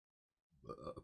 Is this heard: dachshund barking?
no